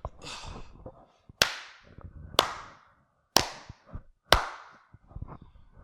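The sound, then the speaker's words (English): Four sharp hand claps, made as a recording starts to sync it, evenly spaced about a second apart, loud with a short ringing decay, plus some faint shuffling noise in between. “Let me do some claps real quick.”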